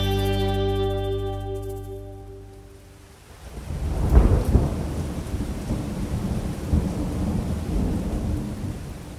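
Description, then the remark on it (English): Steady rain falls outdoors in the Gold Coast hinterland, a dense hiss that swells and stays loud, with low rumbles of thunder rolling underneath after a fading sustained tone at the start. No one speaks. “You'll probably hear rain and some bird life outside as I chat to Jason Crump, one of the greats of Australian motorcycle racing.”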